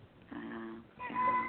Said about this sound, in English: Cat's cracking me up. I'm sorry. I know. I can't get the door, or I would open the door and let her out, believe me. She wants to be on the radio.